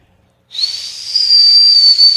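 A person whistles a single sustained, high-pitched note that starts abruptly after a brief silence and holds steady with a breathy, hissing edge, like an old rusty teapot coming to the boil. It's loud, with no talking.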